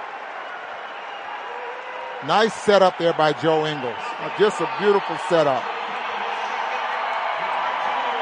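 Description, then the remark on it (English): A basketball arena crowd at a Utah Jazz game against the Warriors cheers in a steady, loud roar that fills the whole clip, while a man's commentary voice speaks over it for a few seconds in the middle. “Crowd's loving it.”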